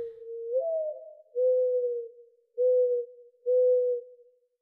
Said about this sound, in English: A small bird with a sharp beak and muted colors perches on an electric wire nearby. It sings. Just a few lines, longer than a haiku but shorter than a sonnet.